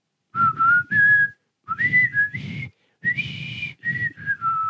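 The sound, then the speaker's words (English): A person whistles a short melody in several breathy phrases separated by brief pauses, the pitch stepping up and down between notes. “I would be able to whistle, but I'm sick.”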